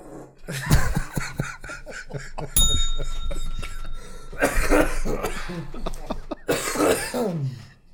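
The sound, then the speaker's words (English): Loud, close-up coughing right into a microphone, several harsh bursts with throat clearing between them, and a brief bright bell-like ding ringing out partway through. “And don't that, cough on your own mic, asshole.”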